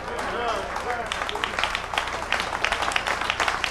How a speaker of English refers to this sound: That's all right. We're going to stop the clap. I'm going to stop the claps again. I've done that before.